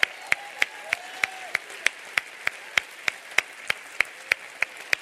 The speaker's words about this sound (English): Give God a hand clap of praise.